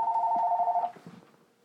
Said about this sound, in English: Hello? Oh, it's the phone.